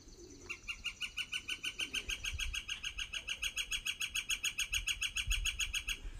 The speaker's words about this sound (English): That bird sits on top of the canister and then rattles with its beak on top of the canister to make that noise. And then down the road, another bird is using their beak to respond with this rattling on another canister.